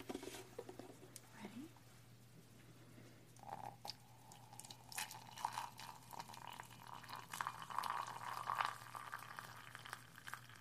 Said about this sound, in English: So I'm going to place it right into our cup. See? And then we'll pour water right over it.